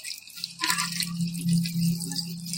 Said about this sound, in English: This is an old bartender trick. When you're at your tailgate, just pour it back and forth. We've got our main drink glass with the OJ.